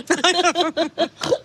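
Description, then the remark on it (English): A quick run of about five loud piggy grunts and oinks, one after another, ending in a rougher squealing snort, voiced as if someone is imitating a pig. “And of course, it ends with a pig noise.”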